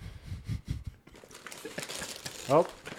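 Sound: wrapping paper crinkling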